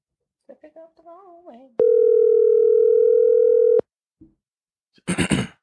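An outgoing phone call rings out with one loud, steady electronic tone lasting about two seconds, then cuts off to silence. Brief voice-like sounds come just before it and shortly after.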